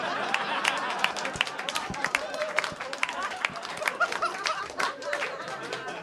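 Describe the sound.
An audience applauds steadily for about six seconds, a dense patter of many hands clapping at once, with crowd voices and cheering mixed into the noise.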